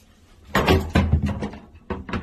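A closet door with hanging space, a cubby and drawers is handled in a suite, with a few clattering thumps and knocks over about two seconds. No one speaks.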